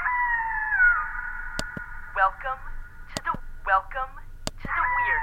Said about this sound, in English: Where do you keep the wolf? There's no wolf. It's just a sound effect.